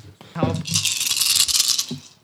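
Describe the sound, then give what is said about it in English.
A handful of 13 six-sided dice (D6s) being rolled rattle and clatter steadily for nearly two seconds, a bright, dense clicking that stays fairly loud before tapering off, with a brief voice murmuring at the start. “So it would be 13 dice total.”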